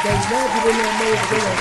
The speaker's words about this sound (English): He definitely get the hand clap for me, man.